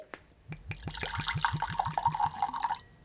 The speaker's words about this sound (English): I'm going to go ahead and get this whiskey poured and we'll get into it.